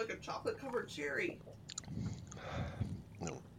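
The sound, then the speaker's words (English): Someone takes a quiet sip of a chocolate cherry liqueur, a soft wet slurp and mouth sounds following a brief stretch of murmured voices. “Shall we take a sip, boys?”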